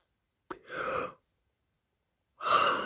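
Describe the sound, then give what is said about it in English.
A breathy, drawn-out yawn with a soft voiced tone, followed after a pause by a second yawn starting; fairly quiet, with no talking. “I start yawning.”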